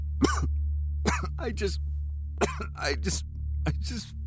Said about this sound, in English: More coughing. This time liquid leaked out of the side of John's mouth.